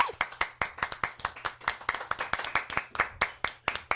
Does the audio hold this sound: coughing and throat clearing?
no